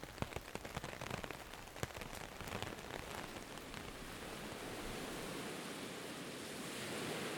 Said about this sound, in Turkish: Yağmur usulca tenteye vurmaya devam ediyordu.